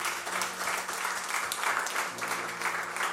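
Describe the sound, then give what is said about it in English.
A church audience claps steadily for several seconds after a prayer, a dense wash of applause with a faint sustained low tone humming underneath and no voices. “A round of applause for the way.”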